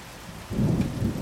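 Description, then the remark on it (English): A thunderstorm with rain in a studio: a steady hiss of falling rain under a deep, rolling thunder rumble that swells in suddenly and stays loud. No one speaks. “Oh, crap, though. It's raining in the studio.”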